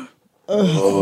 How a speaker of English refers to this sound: What's with the breathing?